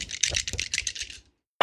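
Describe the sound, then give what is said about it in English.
Three green dice and one yellow die, rolled for a check, rattle and clatter together in a quick run of bright, clicking bursts for about a second, then stop abruptly. No voices are heard. “I have an intelligence of 4 and an alchemy of 1, and so I'm going to be rolling 3 green dice and 1 yellow dice to determine this.”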